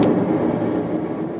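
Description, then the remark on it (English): An explosion inside a building, the chemistry lab, starting a fire: a sharp, bright burst at the start gives way to a heavy, steady low rumble that stays loud for over a second, with no voices. “Good Lord, what was that? Explosion.”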